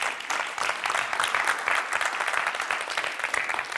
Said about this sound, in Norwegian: Kan ikke vi gi en applaus til deg som var fremme her nå?